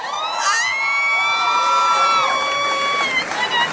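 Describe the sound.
A group cheers and whoops loudly for about four seconds, several high-pitched voices holding long excited shouts over a steady wash of clapping.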